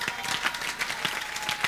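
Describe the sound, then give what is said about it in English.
An audience claps steadily, many hands overlapping into a dense, even patter with a few sharper claps standing out, moderately loud and with no talking. “Clap.”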